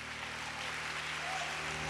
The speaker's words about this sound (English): Why don't you give the King another hand clap of praise and thanksgiving?